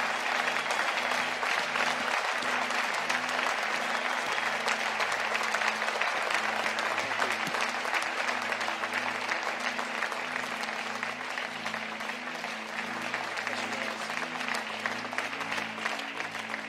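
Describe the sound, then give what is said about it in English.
Sustained applause from a large church audience standing to thank a couple, a dense, steady wash of clapping that holds at full strength for over fifteen seconds with a faint hum underneath. “Can we give them a real round of applause and thank them tonight for all they've poured into our family?”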